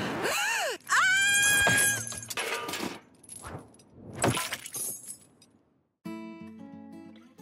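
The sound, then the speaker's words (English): In a video ad, a wrecking ball smashes into a figure of Helvetia, a Swiss national emblem: a screeching, groaning impact, then heavy crashing and crumbling debris in several bursts, followed by a short pause and music starting up. “what we're seeing in that video is Helvetia, a Swiss emblem.”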